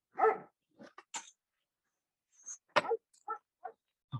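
A dog barks in short, sharp bursts: one loud bark, a quick cluster of yips, a pause, then several more barks spaced irregularly, clear with no voices.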